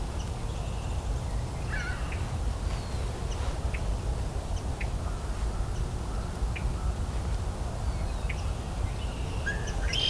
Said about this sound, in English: Ringbill gull.